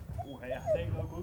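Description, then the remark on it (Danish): A large dog whimpers in thin, wavering whines at a small puppy, then lets out a sudden short bark at the very end, with faint voices in the background. “Rolig nu, det er bare en lille valp. Styr dig. Du er en meget stor hund sammenligning.”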